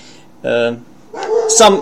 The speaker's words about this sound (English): Okay, this is my dog talking. I think this is his way of agreeing with what I basically say.